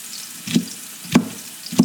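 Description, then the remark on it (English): Onion and bell pepper sweat down together in a pan, sizzling with a steady, even hiss, broken by three soft scraping stirs at regular intervals. No one speaks. “Okay, so the bell pepper goes into the pan with the onion, and we're gonna let those sweat down together.”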